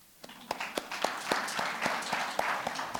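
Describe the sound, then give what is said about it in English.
A church crowd in Namibia breaks into applause for the government, many hands clapping together in a steady, dense patter with a few sharper claps standing out, moderately loud and sustained throughout. “Can we give the government a clap?”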